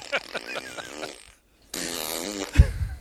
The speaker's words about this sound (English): I wonder if I will ever get to a point in my life where the sound of farts isn't funny. I laughed the other day on the way home thinking the funniest farts are the ones where they're like loud and stinky at the same time.